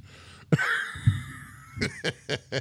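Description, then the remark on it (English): A sharp, sudden sneeze bursts out with a drawn-out voiced tail, followed about a second later by four quick, breathy puffs in a rough rhythm. “Whoa, gesundheit.”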